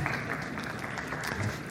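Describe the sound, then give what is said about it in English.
An audience claps together in a steady, dense wash of applause that holds at an even level throughout, with no single claps standing out and no voices over it. “You have to clap by faith almost out of obedience to God, don't you?”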